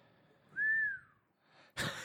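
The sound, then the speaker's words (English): A person whistles one clear, short note that rises slightly and then slides down, heard alone, followed a moment later by a brief, breathy rush of noise. “Nice whistle.”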